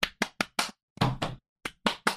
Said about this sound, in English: It's gonna be hard over Zoom. I know, but it is. The clapping's not gonna work. I know. Don't do the clapping. It's just not gonna work.